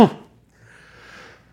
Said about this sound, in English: Bless you. Yeah, I don't know if we can edit that out.